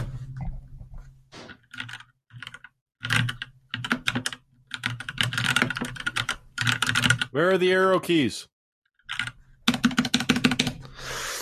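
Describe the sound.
Crisp clacking of keys typed in bursts of rapid strokes on a solidly built 60% mechanical keyboard with PBT keycaps and no arrow keys, with brief pauses between runs and a short spoken question partway through.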